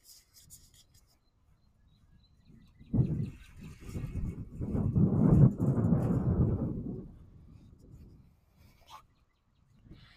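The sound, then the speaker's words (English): A car engine starts up: a rough, rumbling noise swells over a few seconds, peaks loudly, then fades away, with faint scuffs and rustles in the quiet before and after. “There you hear the sound of a car turning on.”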